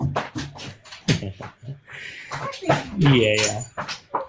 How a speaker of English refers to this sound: The dog behind me going crazy.